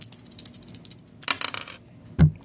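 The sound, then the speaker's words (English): Four dice, rolled for a toughness check in a tabletop game, clatter across a tabletop: light ticking and rattling, a brief flurry of hard clicks in the middle, then a single duller knock as they settle. No voices. “No, so roll 4 dice.”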